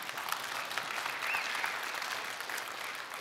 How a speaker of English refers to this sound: Hey, you can clap for that, yeah.